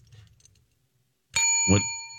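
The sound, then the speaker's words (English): A single bright bell ding, rung as a DIY sound effect, rings out loud after a brief quiet, its metallic tone sustaining with several clear overtones and slowly fading, with a low rumble of room noise beneath. “Where's my bell?”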